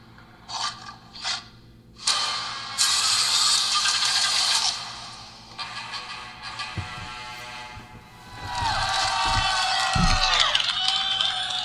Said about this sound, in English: That crowd reaction. They seem hyped about it.